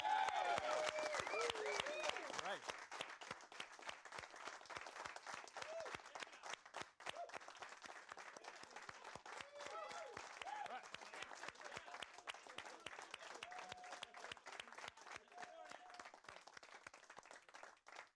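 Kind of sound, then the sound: crowd, audience applause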